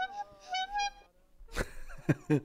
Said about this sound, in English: That's two honks. You know how it goes.